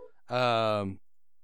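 A single short Google Voice call ring tone, a steady buzzy electronic note lasting under a second, moderately loud and heard on its own with no talking.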